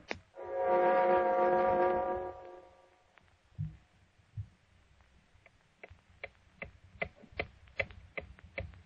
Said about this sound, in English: Listen, as the clock ticks on for John Littlefield.